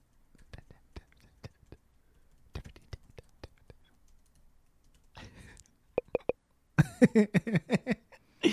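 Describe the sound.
Sharp, quiet computer keyboard taps, made to imitate pencil writing, come in two irregular bursts like slow typing, followed by a breathy rustle and then whispery vocal sounds.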